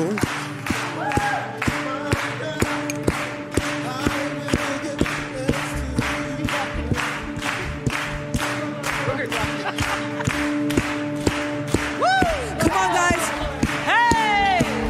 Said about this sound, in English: If that's too much for you, just clap your hands. So can we practice this? Come on, just clap, clap, clap, clap, clap, clap, clap, clap, clap, clap.